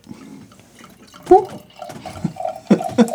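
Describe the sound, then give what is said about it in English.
Beer, a lambic, glugs and splashes as it is poured from a bottle, with a few sharper bursts of gurgling over a low steady trickle; no one speaks. “You enjoy the sound of me pouring it?”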